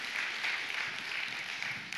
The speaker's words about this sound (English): Amen. Can we clap our hands for God's word? It's great.